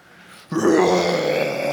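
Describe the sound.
A person imitates the roar of a lion that roared from up on a rock: after a brief quiet moment, a loud, low, raspy vocal growl bursts out and holds steady for over a second, rich and rumbling throughout.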